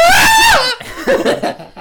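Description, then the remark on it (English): A loud, drawn-out primal, guttural scream rises and then falls away over about half a second, followed by a burst of breathy laughter and chuckling. “There's something to be said for a primal guttural scream and gyration down the middle aisle.”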